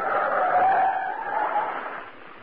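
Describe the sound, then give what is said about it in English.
A loud, sustained tire screech from a speeding truck skidding, with a steady high-pitched squeal lasting a couple of seconds before easing slightly, and no talking over it. “Truck go very fast.”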